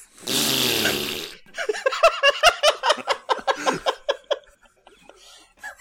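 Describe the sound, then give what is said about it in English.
A loud, buzzy mouth-made fart sound lasting about a second, made as one person's turn at doing their best fart, followed by a burst of rhythmic laughter from several people. “What if we all take a turn doing our best fart and … can choose her favorite one?”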